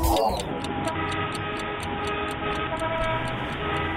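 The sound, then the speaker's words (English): A dense traffic jam: several car horns blare at once in a sustained, overlapping chorus over a steady engine rumble, loud throughout, with no one speaking. “Imagine being stuck in traffic for a week.”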